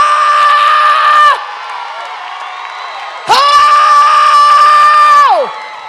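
A preacher screams in two long, loud, high-pitched sustained wails, each held for about two seconds, over the steady roar of a cheering audience.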